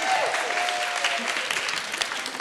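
An audience claps steadily for author Laura DeBarra at a book event, a dense, sustained burst of applause, the many overlapping hand claps forming a bright, even wash of sound with no voices standing out.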